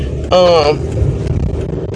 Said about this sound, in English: But yeah, like, I'm headed to my brother's house on the east side of Pontiac, so I'm just driving in the car.